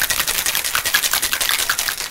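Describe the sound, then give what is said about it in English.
A cocktail shaker holding ice, rum, triple sec and lemon juice for an XYZ cocktail is shaken hard and fast, ice rattling in a steady rapid rhythm of bright, clattering bursts that continue evenly for about two seconds, with no one talking. “All right, so we shake it.”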